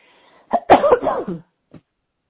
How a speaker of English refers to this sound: Give me just a second for my little cough.